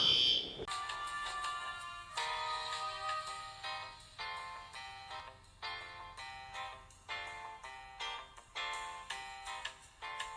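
A fire alarm test in an apartment building blares in a loud, steady pattern of shrill electronic tones, pulsing repeatedly for the whole stretch with no one speaking over it.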